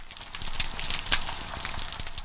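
Snapping shrimp, also called pistol shrimp, underwater: a dense, steady crackle of countless tiny sharp clicks, like frying fat, with a few louder snaps standing out from the constant fizz. No voices.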